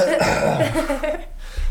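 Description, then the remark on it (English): A deliberate, exaggerated joking cough, loud, with a voiced, drawn-out rasp lasting over a second before a soft low thump at the end. “Cough, crack the internet.”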